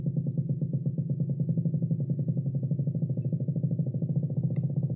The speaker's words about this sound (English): It's the mating call of a haddock, which I found on the British Library website.